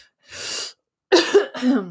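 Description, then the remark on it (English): A sharp intake of breath, then two gruff, rasping throat clears in quick succession, fairly loud, with no talking. “You know, I saw that some podcasters have buttons so you can clear your throat, and it like mutes you basically when you do that.”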